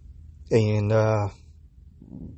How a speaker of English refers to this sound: Excuse me, I burped.